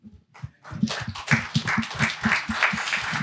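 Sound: round of applause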